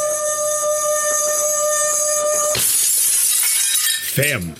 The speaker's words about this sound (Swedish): Och så sätter jag glasen nära varandra. Och sen gnider jag på det andra glaset.